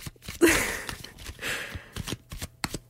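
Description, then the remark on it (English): A deck of tarot cards being shuffled for a tarot reading, with two papery riffling bursts and scattered soft taps and flicks of cards in between; no one speaks. “And yeah, I'm just going to shuffle it. There's not much to narrate. It's like I'm shuffling a deck of cards.”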